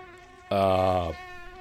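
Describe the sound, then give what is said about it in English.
A gnat's sharp, high-pitched whine flares up loudly near the microphone for about half a second, then fades back into a faint steady hum. “A mosquito in here. No, it's a gnat.”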